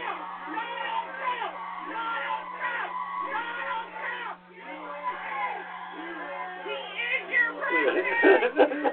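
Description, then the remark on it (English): A crowd chants "USA" in a steady repeating rhythm while a woman's shrill screams rise above them, growing louder and more frantic toward the end. “And she just screams here while the others just say, USA, USA, USA.”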